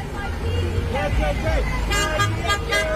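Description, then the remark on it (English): Car horns honk in short repeated blasts over a dense, noisy street protest crowd chanting "NYPD, KKK", with loud voices and traffic rumble filling the scene. “Oh, they're going to honk their horns along with it.”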